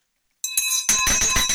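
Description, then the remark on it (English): A handheld victory bell rings loudly, struck rapidly about half a dozen times in quick succession to celebrate a deal, its bright metallic tone sustaining between strikes with no talking. “So I'm already going to ring the victory bell.”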